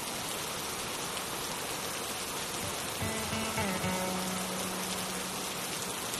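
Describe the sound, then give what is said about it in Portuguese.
Heavy rain pours steadily onto the ground, a dense, continuous hiss of drops hitting the ground. Midway, a low sustained tone joins in beneath the downpour. “Ouvindo o barulho das gotas batendo no chão.”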